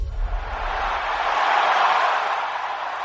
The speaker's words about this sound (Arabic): شغلنا لك صوت الجمهور يا حسين. الله صوت الجمهور هو النبض، القلب النابض في الرياضة السعودية.